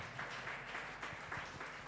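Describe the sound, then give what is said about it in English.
A church audience claps for Jesus during a service, a dense wash of many hands with a steady, roughly rhythmic pulse, sustained and fairly loud, with no voices standing out. “You can do it better unto Jesus by clapping for him.”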